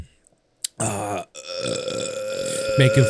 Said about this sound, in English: I had a frizzy drink. It kind of made me burp.